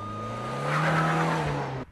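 A car engine roars, its pitch climbing steadily as the vehicle accelerates hard and pulls away, with a tire-squeal edge before the sound cuts off abruptly.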